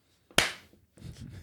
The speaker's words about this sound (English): Just you banging your head.